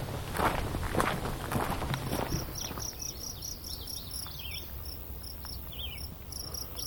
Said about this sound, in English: Kind of cool to hear the crickets. You don't hear them much in the daytime. I don't know why. Sometimes you do, and sometimes you do not.